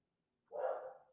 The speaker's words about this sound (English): Oh, I don't even know if you can hear her, but I can. She's so loud. Oh my god, I hate my dog sometimes.